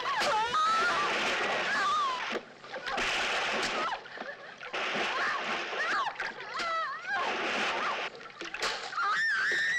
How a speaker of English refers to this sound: Of course, the tomb of the little girl really was shot not in the water. We tried to give it a water effect so you would believe it.